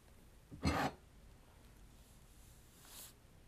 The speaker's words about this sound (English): I don't even know if you can hear that. If you can, I'm sorry, because it's, like, the weird swallowing sound. I've taken two of them.